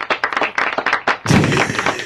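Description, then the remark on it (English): A string of sharp, loud hand claps, roughly eight a second, swells after a second into a dense burst of crowd applause and cheering that fills the rest. “I think that needs to be a slow clap.”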